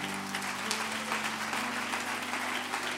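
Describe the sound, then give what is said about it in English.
A church audience claps hands in praise, a steady, dense wash of applause, loud and continuous, with a low sustained organ-like tone humming underneath. “Why don't you lift your voice with that hand clap one more time?”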